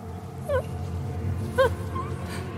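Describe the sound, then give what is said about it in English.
Two tiny, thin whimpering mewls, each brief and plaintive like a small creature crying, separated by about a second over a low, steady background rumble. “It was followed by a tiny, pathetic mule from somewhere up ahead.”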